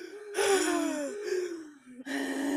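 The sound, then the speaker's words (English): A voice imitates a character breathing loudly while hiding under a cloak: three drawn-out, raspy gasping breaths in succession, with a short pause between each. “is breathing pretty loudly in the scene in the Three Broomsticks where he's under the cloak.”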